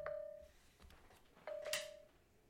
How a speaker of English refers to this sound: Sorry, I had my phone on the charger and it was wet earlier, and I guess it just was pissed off that I was still charging it.